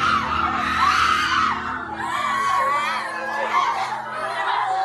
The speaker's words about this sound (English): bleary-eyed students at Kateri Secondary School in Malaysia's northeast state of Kelantan were gathering for assembly when the quiet in the air was suddenly shattered by a schoolgirl's piercing scream. And then another scream rang out, and another.